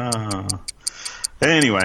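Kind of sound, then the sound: sound effect, clock ticking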